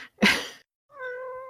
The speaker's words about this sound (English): Kitty agrees. Go away, cat.